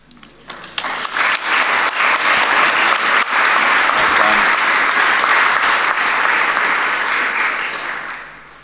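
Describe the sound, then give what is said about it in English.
An audience breaks into loud, sustained applause, dense clapping that swells within the first second, holds steady for several seconds, then gradually tapers off at the end. The applause is for a woman speaker returning to her seat after giving a talk. “Can we just give her another round of applause as she is back to her seat?”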